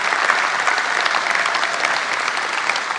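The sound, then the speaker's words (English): A large audience claps steadily in a dense, sustained round of applause, filling the space evenly throughout with no voices rising above it. “How many of you are grateful for that by applause, just by a round of applause?”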